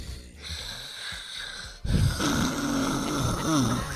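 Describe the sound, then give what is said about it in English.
A voice imitates the heavy, rattling snoring of a man who has put on weight, a raspy wheezing inhale that swells into a louder, throaty snort halfway through and keeps grinding on. “That snoring got you all jacked up because you done picked up all this weight, heavy ass chest.”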